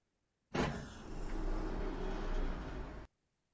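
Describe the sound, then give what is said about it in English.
A sci-fi spaceship door slides shut after people step into the ship, with a steady, loud mechanical whoosh lasting about two and a half seconds, starting and stopping abruptly, with no voices. “They stepped into the ship. Closing doors.”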